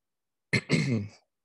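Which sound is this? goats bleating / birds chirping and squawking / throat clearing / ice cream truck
throat clearing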